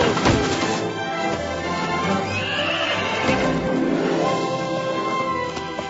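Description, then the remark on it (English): A horse whinnies loudly, its shrill neigh rising and wavering, with hooves clopping and shuffling underneath throughout. “Nice horse.”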